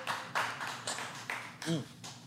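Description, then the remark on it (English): A handful of sharp hand claps, clapped along with a drinking toast, land at an uneven pace, each a crisp slap, with a short voiced murmur cutting in between them. “Let's drink and clap to that, goddammit.”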